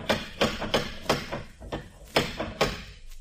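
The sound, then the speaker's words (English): An old door knocker on a house with 1906 fittings raps loudly, about eight sharp, heavy knocks in uneven bursts, with brief pauses between them and no voices. “all 1906 conveniences, including a door knocker”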